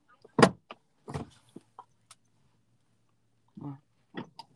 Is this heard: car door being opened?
yes